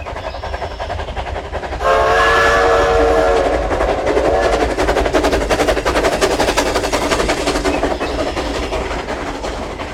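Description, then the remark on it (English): A steam locomotive on the Georgetown Loop sounds a whistle blast, then chugs along the rails with a loud, steady, rapid rhythmic clatter that continues to the end, with no voices. “If you haven't been on that locomotive ride, you should.”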